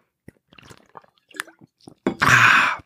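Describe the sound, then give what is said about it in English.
Someone sips water: a string of small wet slurps and mouth clicks, then a loud, breathy exhale after swallowing. “Water. Sorry, guys. Feels great. Feels great on my sore throat.”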